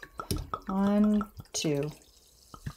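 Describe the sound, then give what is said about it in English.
About 2 ounces of Kraken rum is free-poured from a bottle into a glass in two quick, hollow glugging bursts with a few clicks and drips between them. “Free pouring about 2 ounces.”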